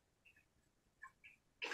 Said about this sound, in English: Bless you.